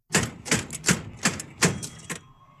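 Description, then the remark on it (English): A pay phone receiver is slammed down again and again, about eight sharp, loud clacking hits in an uneven rhythm, followed by a faint steady tone as the banging stops. “The phone, the pay phone. He's slamming the pay phone.”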